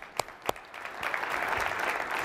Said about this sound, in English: Raise your hands. Let's clap it up for the youngsters. I like that.